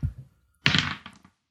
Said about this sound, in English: So, do you want me to roll the d12? I will roll it.